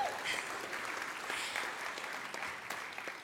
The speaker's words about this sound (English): I want to just give you applause for getting here in the first place.